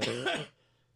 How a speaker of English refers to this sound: I've got a cough.